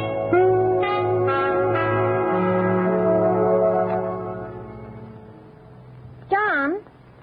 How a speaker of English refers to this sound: let's ring Mr. Edwards' bell first